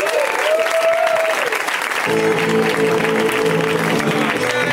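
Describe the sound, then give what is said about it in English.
An audience at the show Put Your Hands Together claps steadily and loudly for the whole stretch for the performers Camarilla and Beth, a dense wash of many hands, while a simple tune plays along underneath the applause. “Keep it going for Camarilla, you guys. Give a round of applause.”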